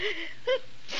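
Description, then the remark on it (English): A single quick sneeze with a strained, voiced edge, moderately loud, bursting out briefly against a quiet background with no one talking. “Gesundheit.”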